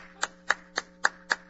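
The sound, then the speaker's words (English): One person claps five times in a slow, steady rhythm, each clap sharp and evenly spaced, fairly quiet over a faint electrical hum, with no talking. “I'm not stopping to applaud for you.”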